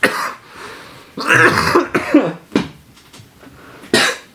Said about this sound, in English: God damn, I can't stop coughing. You're dying over there.